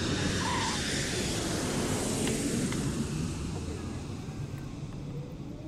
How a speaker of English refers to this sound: Ladies and gentlemen, we'd like to be the first to welcome you to Las Vegas. Local time here is approximately 4:34 p.m. For your safety and comfort, please remain seated until the plane has parked at the gate and come to a complete stop.